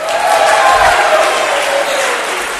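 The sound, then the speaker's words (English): A large crowd of townspeople cheers wildly in approval, a dense, loud roar of voices that holds steady for the whole moment without letting up. “The crowd went wild with approval.”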